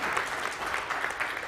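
A church audience claps steadily for a child who filled up a bottle to help pregnant people, a dense, even burst of applause, moderately loud with no voices standing out.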